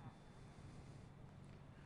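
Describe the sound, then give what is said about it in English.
A church audience of many voices bleats "bah" together in imitation of sheep during a sermon, each saying it to the person next to them without a microphone, a rough, sustained chorus of overlapping baa sounds. “If you're glad you're a sheep, I want you to look at the person next to you and say, bah.”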